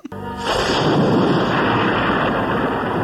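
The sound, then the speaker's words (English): A loud crack of thunder from a thunderstorm at night bursts in and rolls on as a heavy, sustained rumble for several seconds, powerful, with no voices. “Like he moves in at night while there's a thunderstorm going on.”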